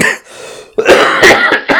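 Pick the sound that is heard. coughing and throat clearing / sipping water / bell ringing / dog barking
coughing and throat clearing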